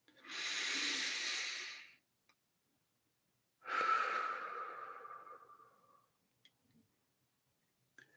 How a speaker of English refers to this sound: the trauma centers of our brain can be brought to peace by this kind of breathing. It has an impact in our body. When you're in fight or flight, you cannot breathe this way. And so by breathing this way intentionally, you can bring your body to calm.